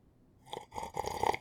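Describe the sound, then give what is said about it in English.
Pumpkin tea slurped from a witchy mug: about a second of airy, wet sucking noise in two or three quick bursts, fairly quiet, with no talking over it. “Can I slurp? Yeah, slurp away.”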